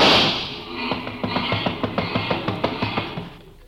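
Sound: car engine revving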